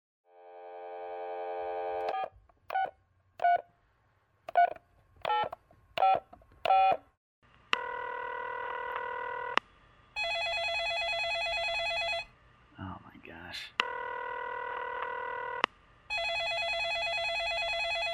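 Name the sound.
telephone being dialed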